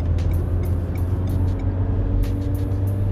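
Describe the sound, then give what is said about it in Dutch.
The old diesel engine of an Opel Combo CDTI van runs with a loud, steady low rumble, and light ticking clatter repeats every fraction of a second. Nobody speaks. “Wat een oude stinker is dit, zeg. Combo CDTI.”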